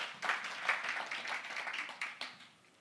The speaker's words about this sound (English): Man, I pray, God, would you give us a family who flips over tables for the glory of God? You can clap for that. That's good.